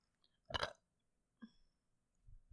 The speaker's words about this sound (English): She just burped at me.